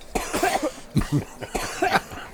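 A person coughs three times in quick succession, harsh, rough bursts close to the microphone with short pauses between them and no talking.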